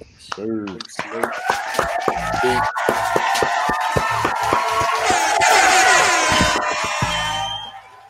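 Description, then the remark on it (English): A crowd claps and cheers for several seconds for the guest a rapper, with whoops and shouts rising into a dense, loud roar of applause before tapering off at the end. “Clap it up one time.”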